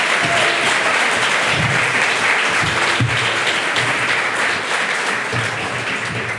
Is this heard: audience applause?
yes